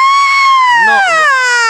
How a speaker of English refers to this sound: Oh no. That's her legs and arms are completely cut off, and she is screaming, just a shrill fucking scream.